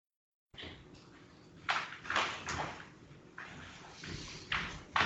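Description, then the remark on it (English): Several irregular thudding footsteps of a dog on a hard floor, fairly soft, with uneven gaps between steps against a quiet background. “I was talking about how loud those footsteps are in person.”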